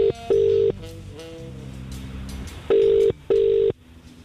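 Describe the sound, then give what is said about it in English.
A telephone call being placed: a few quick dialing beeps, then a steady electronic ringing tone in paired bursts, clear, as if heard through the handset. “Should we phone her?”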